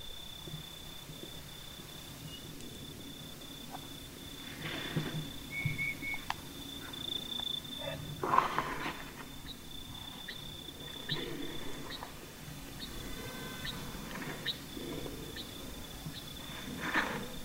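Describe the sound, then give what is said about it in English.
A faint night parrot chorus in the desert between ancient stone mesas: soft, short bell-like whistled notes scattered irregularly over a steady high-pitched hum, with occasional brief rustling bursts and no talking. “Hear that tiny bell? That is a night parrot. A night parrot chorus is the quietest show in the desert.”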